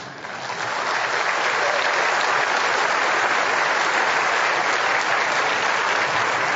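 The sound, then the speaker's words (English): A crowd breaks into steady, sustained applause, the dense clapping swelling quickly in the first second and then holding loud and even throughout, with no voices standing out. “Father, we applaud you.”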